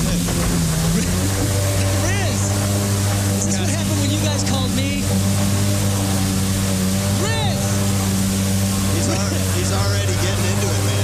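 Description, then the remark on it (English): A jet ski engine heard over a phone line drones steadily over water, with a low harmonic whine holding constant, while voices chatter intermittently over it. “Okay, somebody's on a jet ski.”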